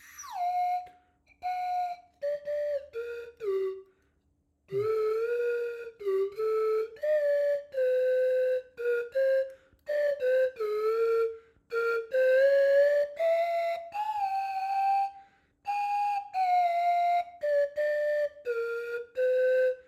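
A slide whistle plays a melody alone, with gliding pitches that swoop up and down between short, separated phrases, clear and fairly loud, with no talking.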